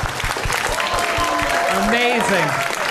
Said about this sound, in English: You have to clap so that way it brings them back to life, like Peter Pan or whatever. Yeah. Tinkerbell, did you hear that, Tinkerbell? Keep clapping. Keep clapping.